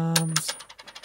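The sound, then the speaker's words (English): A flipped coin lands heads up with a bright metallic clink, bounces a couple of times, then rattles and spins in a quickening series of small taps before settling, over a faint low hum. “It's a heads.”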